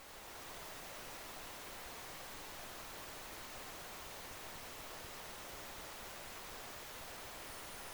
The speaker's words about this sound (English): Maybe beyond our hearing. It sounds like somebody's in the shower. I'll spare you the guessing. This is the actual recording from the bottom of the Challenger Deep just sitting there. Oh, it's a recording of silence.